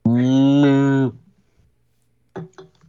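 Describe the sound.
A single loud cow moo, low and drawn out for about a second, then near silence before a couple of brief, faint voice fragments.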